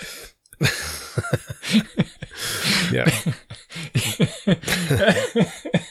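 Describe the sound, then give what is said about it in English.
Sharp bursts of coughing tangled with breathy laughter, repeating in uneven fits across the moment, with a brief spoken word slipped in among them. “So, I'm getting like coughing and laughing at the same time.”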